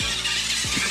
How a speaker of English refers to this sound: It's an RC car. I see that. There it is. Yeah, that's more like it right there. That's more to scale.